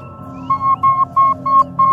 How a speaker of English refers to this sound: Oh. Well, that beeping was annoying.